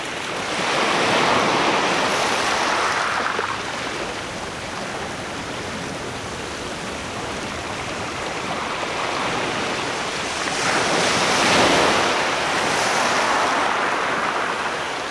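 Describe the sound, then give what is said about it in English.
Ocean surf rolls in steadily on a California beach, with two louder waves breaking and washing up around the start and again near the end, a broad continuous roar with no voices. “Kim Wilson recorded these California surf sounds.”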